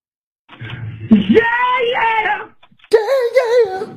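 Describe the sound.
A caller imitates a rock singer's high-pitched scream, sliding upward into a long sustained wail, then after a short pause launching a second shrill, wavering cry, loud.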